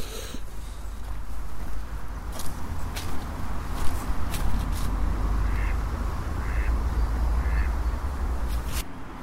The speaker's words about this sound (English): So many ducks. That's a group of 5 ducks there. I think they'd decided to hunker down a bit and I walked past. Sorry, guys.